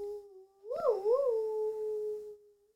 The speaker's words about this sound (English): Cat in the room? I can hear Gigi's in the other room meowing.